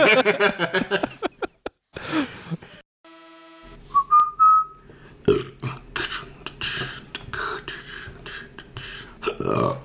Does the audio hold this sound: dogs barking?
no